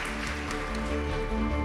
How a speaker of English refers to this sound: Could you please join me in giving a huge round of applause for Helen Fielding, for Gill Hornby, and for Kalika Sands.